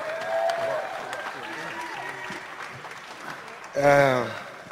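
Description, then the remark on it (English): A crowd claps steadily throughout as Floyd Mayweather is introduced, a dense wash of applause mixed with scattered cheers and whistles, ending with a loud, sustained shout rising above the clapping. “Ladies and gentlemen, give a big round of applause for none other than Floyd Mayweather.”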